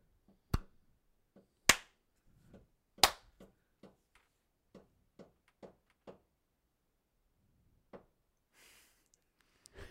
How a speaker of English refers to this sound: Maybe do like a fat clap. I don't know, I was trying to be fat. How do you do fat clap?